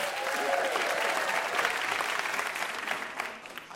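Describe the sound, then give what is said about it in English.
The audience of the show Ask Me Another applauds the VIP guest Keli Goff steadily, a dense wash of clapping at an even loudness for several seconds before thinning slightly toward the end. “And one more big round of applause for our VIP, Keli Goff.”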